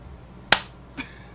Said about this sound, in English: We did it twice, because we're having so much fun doing it. That was a lie. We just both clapped. Which is basically the same as high-fiving. No, it's not.